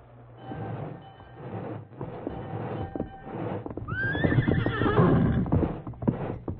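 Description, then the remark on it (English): A male horse named Silver lets out a loud, rising whinny midway through while hooves clop steadily throughout, over a low, continuous rumble in the background. “Steady, Silver. Steady, boy.”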